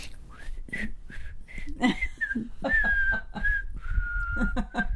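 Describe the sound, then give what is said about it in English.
A person whistles a short, bouncy folk tune, the pitch hopping between notes with a few sustained tones and audible breathy gaps between phrases. “So we decided to whistle Camptown Races.”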